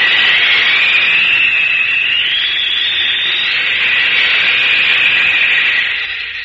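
A steam locomotive roars past in a loud, continuous rush of hissing steam and clatter, a high whining tone sliding gently in pitch throughout before the sound eases off at the end.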